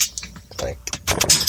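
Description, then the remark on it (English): Glasses clink together in a toast, a brief bright ring near the end amid bustling noise and murmured voices. “Those are clinking right glasses.”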